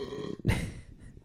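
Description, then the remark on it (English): A single loud burp from a man erupts suddenly, deep and rumbling, then trails off into a softer guttural tail. No one speaks. “he's burping.”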